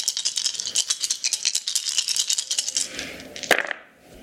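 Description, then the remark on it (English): Six dice rattle and clatter together in a rapid, continuous burst for about three seconds as they are rolled for a strength roll, ending with a sharper final clack as they settle; fairly loud, no voices. “Because it's just a pure strength roll. You know. So 6 dice.”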